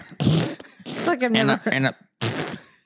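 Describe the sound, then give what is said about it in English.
A person blows several wet, raspy mouth fart noises in quick bursts, fairly loud, with some voiced, wavering sounds in between and a final sputter after a brief pause. “No, you got to know when to do the fart noise.”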